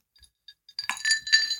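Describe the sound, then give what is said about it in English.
A few faint, high-pitched glass clinks, then a louder, busier stretch of ringing glass and splashy noise as water is poured into a glass of whiskey. No talking. “No, you know you're supposed to add a little water to your whiskey.”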